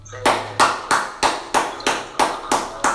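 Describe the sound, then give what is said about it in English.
A person claps hands in a steady, even rhythm, about eight sharp, bright claps over a few seconds, each one crisp and moderately loud with a short ringing tail. “You gotta give the standing ovation for that.”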